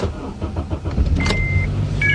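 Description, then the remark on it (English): A car engine idles steadily, the car being used as a power generator to charge a device, its low rumble filling the background, with a brief high electronic whine and beeps appearing near the end. “So I resorted to an overpriced generator, my car.”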